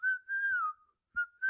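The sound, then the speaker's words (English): A person whistles a short melodic phrase, the whistled tune from the film Kill Bill: a long sustained note that slides downward, a brief pause, then two more clear notes. No one speaks. “Wasn't that one where they used the whistling and they looped it?”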